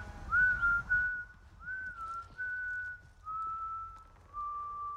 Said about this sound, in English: He's whistling at a gal.